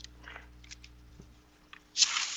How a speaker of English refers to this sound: Yeah. Yeah. That's hail, ladies and gentlemen, in Stockbridge, hail Vermont. Off the metal roof. That's beautiful.